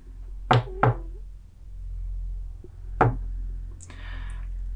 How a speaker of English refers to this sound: On the final knock, the door goes ajar and just kind of like swings in a little bit.